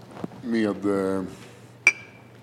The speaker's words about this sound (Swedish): 1, 2, 3, skål. Skål. Vi skålar in den här podden.